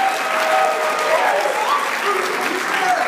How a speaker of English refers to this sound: Wow. And all that applause is for our first guest